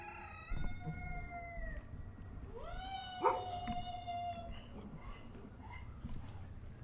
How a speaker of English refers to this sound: The crowing of a rooster awoke Lennie Gray the following morning.